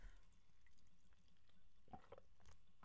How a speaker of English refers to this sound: I'm going to take a sip of my water here.